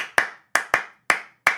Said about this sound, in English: Both of these features are combined in clapping music. A very small cell is heard, one bar of music in 12/8. The fact it's in that time signature is important.